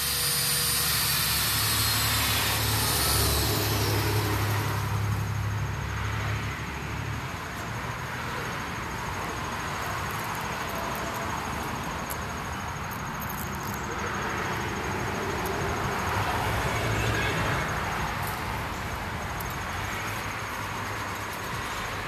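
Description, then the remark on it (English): A loud, steady mechanical roar from machinery trimming the branches off a tree (not cutting it down), a dense engine drone with a high whine near the start that fades, then surges slightly later on. No voices. “They're chopping a tree up over here. They're not cutting it down, they're trimming the branches down off of it.”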